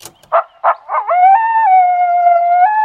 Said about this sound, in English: Coyotes are sometimes called song dogs because they communicate with vocalizations that travel over a long distance. Think howling. As a matter of fact, I made this recording while I was sleeping in my tent last night. It's pretty spooky.